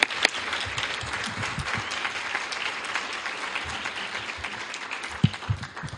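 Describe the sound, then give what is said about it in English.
Steady audience applause for a pianist at an event, a dense wash of many hands clapping at once, moderately loud and sustained throughout with no voices standing out. “Can we applaud”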